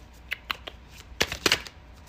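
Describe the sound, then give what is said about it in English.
A deck of tarot cards being shuffled, with a few soft separate flicks followed by a quicker burst of papery riffling, no voices. “Maybe I should have pre-shuffled, but maybe you guys enjoy hearing the cards just kind of shuffling.”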